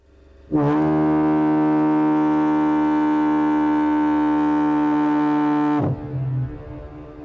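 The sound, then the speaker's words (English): A single long foghorn blast from the Bailey Lighthouse on the Hill of Howth, Ireland, deep and loud, holding a steady droning tone for about five seconds before cutting off abruptly, leaving a faint low rumble. “And were the light invisible because of fog, the first real sign of home might well be the familiar sound of the foghorn from the Bailey Lighthouse on the Hill of Howth.”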